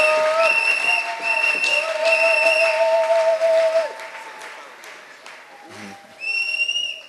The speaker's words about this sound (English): Acclamons, acclamons. Let's clap, let's clap, let's clap for the Lord.